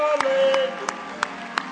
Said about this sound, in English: Let's give the Lord a hand clap. Come on, let's give the Lord. No. Let's give the Lord a real hand clap. Praise the Lord. Hallelujah.